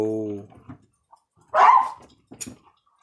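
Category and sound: animal, dogs barking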